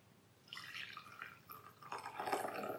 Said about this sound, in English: I'm going to plunge the coffee now. Okay. So. Oh, yeah. And now I'm going to pour the coffee.